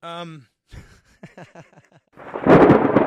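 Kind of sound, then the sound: nature, thunder clap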